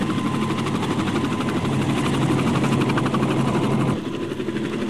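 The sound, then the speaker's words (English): A jet helicopter hovers directly over a stage with a loud, steady turbine roar, rapid rotor chopping and a low droning hum while a net is lowered and picks up five performers, then the sound shifts and eases slightly as it flies off in the last second. “In seconds, the net drops over the stage, picks up all five …, and the helicopter flies off.”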